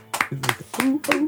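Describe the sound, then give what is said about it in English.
A puppy named Puppy yips excitedly in four quick, evenly spaced bursts, each a short, high, squeaky bark with a honking, seal-like quality, fairly loud. “He sounds like a little seal.”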